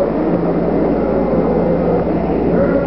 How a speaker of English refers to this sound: Ignition sequence start. 6, 5, 4, 3, 2, 1, 0. All engine running. Liftoff. We have a liftoff. 32 minutes past the hour. Liftoff on Apollo 11.